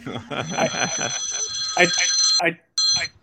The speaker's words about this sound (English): Whoa, what was that? That was wild. Oh, I had a phone coming in. The remix. That was my brother was actually just calling me.